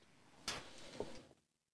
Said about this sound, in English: Did you see what I just did with my, like, look at what I'm doing with my swingy chair.